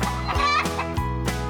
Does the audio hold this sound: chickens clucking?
yes